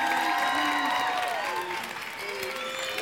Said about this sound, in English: So as I say their name, give them applause, because they are some incredible dads from different walks of life.